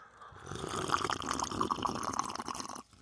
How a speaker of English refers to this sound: The slurps are back, baby.